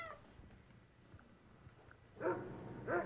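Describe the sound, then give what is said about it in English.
A dog gives two short barks close together near the end, after a stretch of quiet background hiss, with no one talking. “That's a dog barking, isn't it?”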